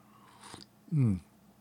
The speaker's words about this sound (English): After a sip of coffee, drinking the last of the Waffle House coffee that I had on hand.